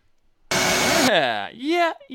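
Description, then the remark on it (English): A vacuum motor attached to a home-built vacuum table used for flat stock printing kicks on with a loud, rushing roar for about half a second, then cuts out as a falling, then rising, whine sweeps through. “So, you guys are just listening, but he built the vacuum table, drilled all the holes, made the frame, attached the vacuum to it, and he's now able to do flat stock printing.”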